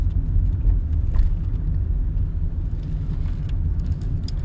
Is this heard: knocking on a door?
no